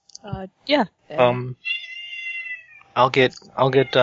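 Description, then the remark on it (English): A cat meows several times, including one long, high, drawn-out meow in the middle, with people's voices before and after it. “I'll get shut that cat up and I'll be right there.”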